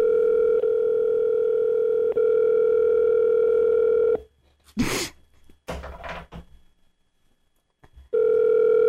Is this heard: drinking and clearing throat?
no